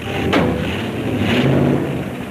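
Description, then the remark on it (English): A car engine rumbles steadily and loudly, with two brief surging bursts as it revs while warming up, no voices present. “Show the lady what the car can do.”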